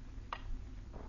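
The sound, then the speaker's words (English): Two crisp clock ticks, roughly seven-tenths of a second apart, over a low steady hum; the first tick is sharper and louder, the second softer. “You make a pretense of being quite busy, but your eyes keep wandering to the clock.”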